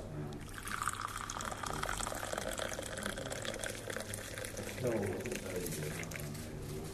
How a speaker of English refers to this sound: You want me to pour high tea? High tea, please. This, above all things, is the most important sound of the night, the pouring of the tea.